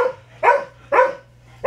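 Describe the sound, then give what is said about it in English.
A dog named Donner barks sharply in a steady series, three loud barks about half a second apart, with a low steady hum underneath and no talking. “Goddamn dildo dog.”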